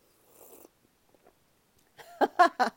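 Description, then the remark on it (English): A short, airy slurp of hot coffee being sipped, then a pause before a few brief, throaty vocal sounds. “I don't do that normally, but just as an homage to Dave Lee on his show, The Big Slurp”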